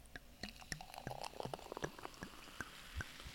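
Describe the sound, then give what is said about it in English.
Champagne is poured into a glass, then fizzes and crackles with a scatter of sharp little pops and bubbling, fairly quiet, with no voices. “Here, I'm going to try and make it up to you guys by letting you listen to me pour the champagne into my glass.”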